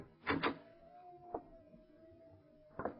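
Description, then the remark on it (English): A door handle rattles in a quick double clack as the door is tried, then the door swings open with a long, steady creak, ending in another knock or thud. Fairly quiet, with no voices. “Try the door, Lamont.”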